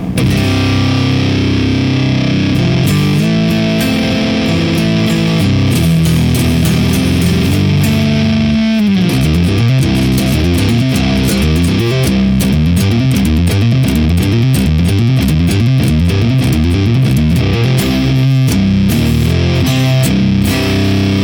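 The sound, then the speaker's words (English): Heavy, saturated electric guitar, with level and drive fully up and voicing turned right, played into a Mesa Gargantuan oversized speaker cabinet, plays thick sustained chords, then shifts into fast chugging riffs with a rhythmic, rumbling low end. Loud and dense throughout, with no voices. “And this is going to be the level is dimed, the drive is dimed, the voicing is to the right. And it is going into the Mesa Gargantuan, the giant oversized cabinet of death and doom.”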